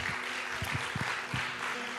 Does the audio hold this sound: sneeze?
no